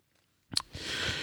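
A sharp crunch of a bite after a moment of silence, then steady chewing with a rough, crackly texture and a couple of soft thuds of the jaw, with no talking.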